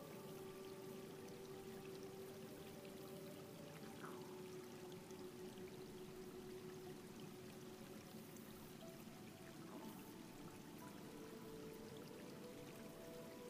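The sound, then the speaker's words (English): A steady, unbroken rush of stream water tumbling over rocks and pebbles, full, with a constant gurgling hiss that holds the same level throughout and no voices. “I want you to observe the water, the way it moves over the rocks, pebbles.”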